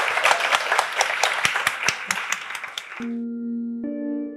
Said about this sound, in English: One more big round of applause for Maryanne